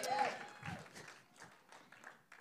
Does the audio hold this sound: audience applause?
yes